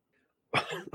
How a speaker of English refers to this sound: Whoa, got all excited from the chat. I'm sorry. You got the devil in you. Yeah. You got to exercise him out. Cough that devil out.